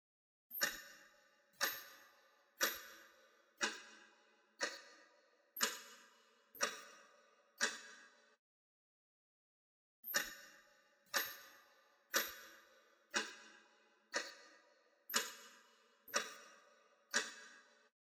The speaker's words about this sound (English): I'm gonna mute our mics and play that weird music. I'm gonna play the ticking clock.